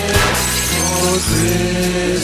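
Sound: window glass shattering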